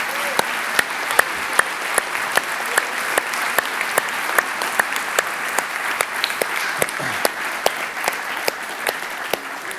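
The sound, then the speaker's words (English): A large audience claps steadily and warmly, a dense wash of many hands with sharper individual claps popping out, sustained at an even level throughout with no talking; applause in thanks for Sunday school teachers on Mother's Day. “And for teachers who were here to teach them, would you express your applause to them, your thankfulness for them?”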